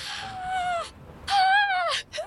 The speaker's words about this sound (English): What a scream of victory.